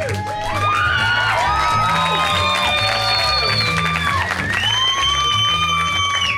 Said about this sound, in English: You weren't even clapping at me, you were clapping at something he just did. That's what I think. I think you guys are laughing and clapping at me.